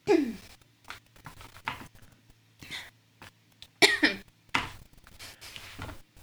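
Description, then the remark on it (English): Someone clears their throat several times with thick, phlegmy rasps and short cough-like bursts, broken up by brief pauses. “Hey, can you clear your throat? Because that sounds really gross.”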